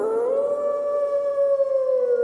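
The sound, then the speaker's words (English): A single wolf howls in one long, sustained tone that rises slightly at the start and holds steady, loud and clear with no voices present. “Howling Around - All About Wolves”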